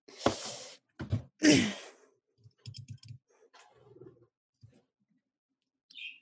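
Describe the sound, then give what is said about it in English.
A pet bird, loose in the house and going back and forth, squawks and chirps in a few loud, raspy bursts, then makes quieter clicks and soft calls, ending with a brief high chirp. No one speaks. “the bird is, yeah, really making itself known”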